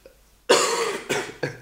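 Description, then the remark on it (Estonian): Three coughs: one long, harsh opening cough followed by two shorter bursts in quick succession, loud, with no talking. “köhib, ma ütlen.”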